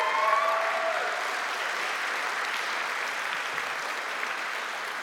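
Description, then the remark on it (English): A crowd applauds the Supreme Court reversing Roe versus Wade, a steady, dense, even patter of many hands clapping that holds for several seconds, with a brief high whistle or cheer near the start. “But before we dive into our text, I would like for us to just give a round of applause for the Supreme Court reversing Roe versus Wade.”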